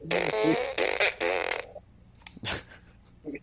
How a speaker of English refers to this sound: for moments like this, I got us a new prop for the show. Nice. It is a ray gun. This is going to be good for us.